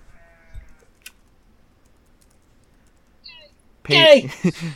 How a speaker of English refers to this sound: I was gonna say, pay this no mind to the sheep.